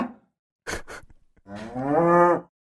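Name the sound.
cow mooing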